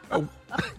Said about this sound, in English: But I like the way he had to cough. He got to hit the cough. Because he done had wind all in the back of his throat trying to say wedding.